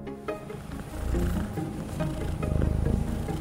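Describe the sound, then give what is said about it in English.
A Singapura cat, also known as the Longgang cat, vocalizes, a continuous low, throaty murmur that swells after the first second and turns into a pulsing, purr-like rumble near the end. “It's the Singapura, also known as the Longgang cat.”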